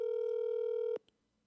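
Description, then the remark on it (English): A single steady electronic ringback tone from an outgoing phone call, held for about a second before cutting off with a soft click, then near silence. Clear, with no voices. “Wow, this is ringing a long time.”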